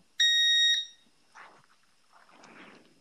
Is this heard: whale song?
no